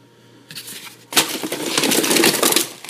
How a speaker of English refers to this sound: I've also got an E.T. the Extraterrestrial lunch tray. You hear that? Sorry if it's loud.